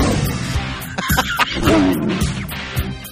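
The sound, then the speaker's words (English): A tiger in a cage in an abandoned home on the East Texas coast growls low and rough, the rumbling rising and falling in a steady run with a few harsher surges and no voices. “He's watching me now as I get high with a tiger.”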